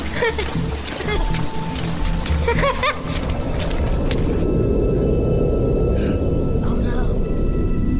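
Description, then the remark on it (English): Heavy rain pours down in a steady, dense roar with a deep rumbling undertone, loud and continuous throughout, with occasional brief splashy bursts rising above the downpour. “Oh, man, is it raining. Pour out!”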